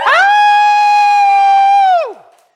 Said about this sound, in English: I didn't get to do the announcements this morning, so we can get our scream on. Y'all feel like screaming? Y'all want to do it? 1, 2, 3. Scream.